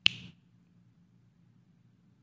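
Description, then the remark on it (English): A single sharp finger snap cracks out at the very start, bright and crisp, then fades quickly into a faint low hum with no other sound. “I can snap my fingers and join them like that.”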